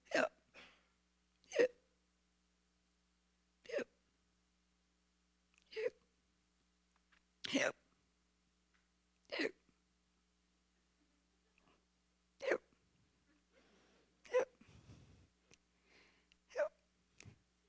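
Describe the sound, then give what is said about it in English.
A whale's hiccups, heard from inside its belly: a series of sharp, abrupt hiccups repeats at irregular intervals, roughly ten in all, each a short loud gulp separated by silence, with a faint rustle near the end. “How can I even think to repent when this floating elephant thing, and it's got the hiccups.”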